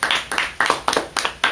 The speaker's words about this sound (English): Wow, bro, I got the whole squad clapping. Laughing. Okay. No, clapping, because you guys were clapping.